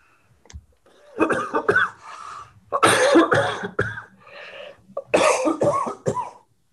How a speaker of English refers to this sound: No, I held that cough the entire time you're talking because I didn't want you to have to start over saying all of that again. Sorry.